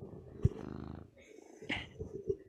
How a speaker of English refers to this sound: And you know what we could do? We could do a cat purr ASMR.